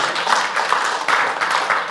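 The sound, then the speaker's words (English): An audience claps steadily for about two seconds, a dense, even patter of many hands at constant loudness with no voices standing out. “Get clap for supporting.”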